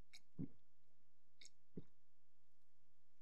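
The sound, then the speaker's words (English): Quiet mouth sounds of someone sipping and gulping dark wine: a light wet slurp followed by two soft swallows about a second apart, with no talking. “That was a nice sip.”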